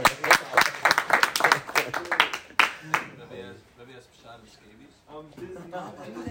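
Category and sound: crowd, audience cheering and clapping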